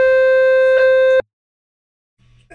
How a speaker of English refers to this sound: What's that? A fire alarm. The fire alarm.